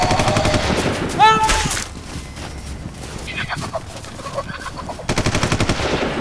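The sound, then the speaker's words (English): Rapid bursts of loud automatic gunfire, aimed at a bird in the trees, rattle at the start and again near the end, with a brief bird-like squawk early on and a chaotic, noisy lull between the volleys. “On the bird! On the bird! Just shoot her! We try!”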